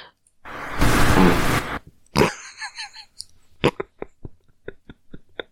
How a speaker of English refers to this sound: I don't remember which one of us farted. It was me, because girls don't fart, but...